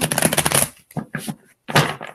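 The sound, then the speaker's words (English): A deck of cards is riffle-shuffled, a dense crisp flutter lasting under a second, followed by a few shorter papery shuffles and taps as the cards are squared up. “One more shuffle for Iris.”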